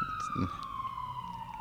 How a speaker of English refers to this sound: Mind the siren. Yeah. King Street, ladies and gentlemen.